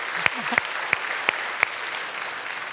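A crowd applauds steadily in a church sanctuary, a dense wash of clapping with a few sharper, louder claps punching through at an even rhythm.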